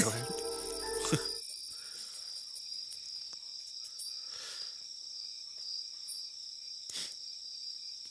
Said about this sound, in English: I love the sounds of cicadas.